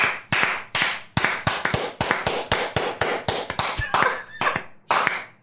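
Hands clap sharply and steadily, about three claps a second, fairly loud, a single person's brisk applause with no voices around it.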